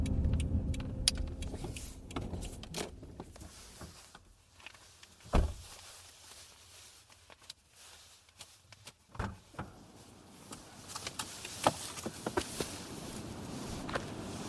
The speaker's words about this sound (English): I was still recording as I stepped out of the car. This section is the final few moments of the longer recording from my mobile.